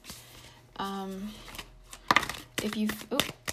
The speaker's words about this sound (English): Using Morgan Greer Tarot today, if I didn't already mention that. Okay, let me just get one more card.